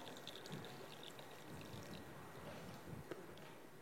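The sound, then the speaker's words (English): Water is emptied out of a Chemex coffee carafe in a steady, continuous splashing stream that lasts a few seconds, fairly quiet, with no talking over it. “So I clearly haven't thought all of this through because now I've got to get rid of that water, but that's okay.”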